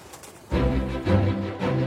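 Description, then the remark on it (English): Pigeons coo in low, throaty, burbling phrases that swell and dip in a couple of rolling pulses after a brief quiet start, with no one talking. “Welcome to Pigeon World Windsor. Eat like a pigeon at the Pigeon Cafe.”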